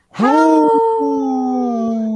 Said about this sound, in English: Hey, that is such a sad howl.